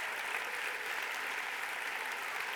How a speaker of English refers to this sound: We're going to cheer you because we love you. Yeah. That's it. That's it.